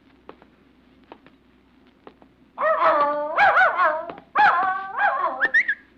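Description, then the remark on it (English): A dog named Cinder, near a campus bell tower in fog, barks in a run of drawn-out, whiny, high-pitched yelps that rise and fall, loud and without talk, after a few faint ticking taps. “Well, you're a nice dog.”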